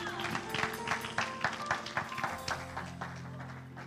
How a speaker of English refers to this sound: Praise the Lord. You can be seated. Let's give the Lord a hand clap of praise as we're being seated.